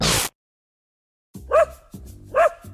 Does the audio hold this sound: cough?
no